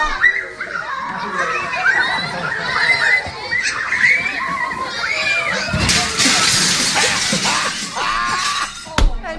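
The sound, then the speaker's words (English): Children at a party shout and chatter over one another in a busy, high-pitched jumble, with a loud crashing burst midway as the Jersey Devil mascot runs full speed into a large glass window, and a sharp smash just before the end. “You hear it? You hear the kids?”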